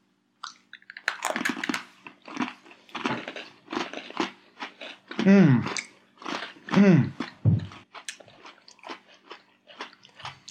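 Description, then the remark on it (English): Loud crunching as someone bites into a crisp cookie and chews, a series of sharp brittle crackles repeating in an irregular rhythm, with a few voiced sounds mixed in between bites. “This cookie is very crunchy.”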